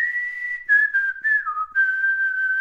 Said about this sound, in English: I'd like to talk about whistling.